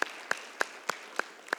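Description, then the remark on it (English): An audience at a church gathering claps in a slow, steady rhythm, six sharp claps evenly spaced about a third of a second apart, fairly quiet, with no voices. “Is that worth clapping for?”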